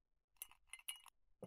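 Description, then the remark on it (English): An ice cube clinks against the side of a glass of warm vodka several times in quick, irregular taps, bright and ringing but fairly quiet, with no talking. “There's an ice cube in here.”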